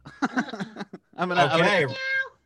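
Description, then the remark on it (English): A person imitates a cat's meow as a trivia-game buzzer sound effect, a drawn-out, wavering vocal cry lasting about a second, preceded by brief talking, clear. “I'm doing kitty cat. Okay. All right, we got a little kitty cat and we got a little wah wah wah style.”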